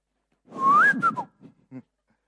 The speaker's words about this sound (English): It's there in the book of Zechariah that sometimes God whistles to get your attention.